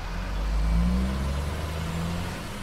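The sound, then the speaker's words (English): A new Chevy pickup truck engine rumbles, its low drone swelling briefly as it revs, then holding steady as the truck drives off, with no voices. “bought that new Chevy truck and drove off in it.”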